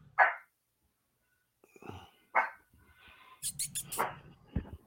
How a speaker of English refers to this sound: A little mouthy fucking dog there. Pet that dog. Can I pet that dog?